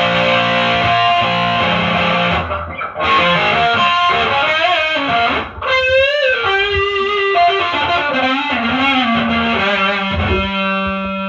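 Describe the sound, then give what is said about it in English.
Heavily distorted electric guitar, played through distortion turned all the way up in vintage mode, plays loud, sustained notes with pitch bends and thick, buzzing harmonics, continuous for about eleven seconds with a brief dip midway and no talking. “Vintage mode, nothing but distortion.”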